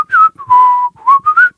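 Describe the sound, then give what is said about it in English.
A person whistles a short tune, several clear sustained notes gliding between pitches in a bouncy phrase, fairly loud with no talking. “Or it's like, so I like the whistling a tune idea, though, because, you know, he's just down there like...”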